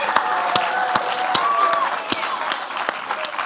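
A crowd bursts into steady applause, dense rapid clapping filling the whole stretch at a fairly loud, even level, with a few brighter individual claps and faint voices mixed in.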